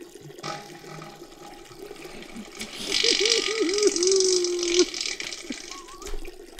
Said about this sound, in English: Dude, if you're at a urinal and somebody's in a toilet you're laughing. And there's a bowl fart, do you say anything in public?